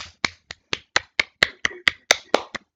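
Steady clapping, about a dozen sharp, crisp claps at an even quick rhythm, sounding like just one or a few people applauding. No one speaks.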